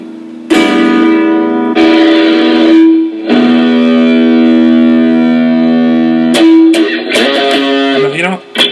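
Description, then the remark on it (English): A loud, heavily distorted electric guitar riff: a few long, ringing power chords struck in turn, then a burst of quicker, choppier notes at the end. “I'm going to use the loud distortion effect.”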